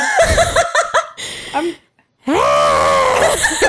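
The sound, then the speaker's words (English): A person imitates a fox scream: a few choppy, laugh-like vocal bursts, a brief silence, then one loud, drawn-out, raspy screech. “Would you like your impersonation of the fox screams that we heard last yes, night?”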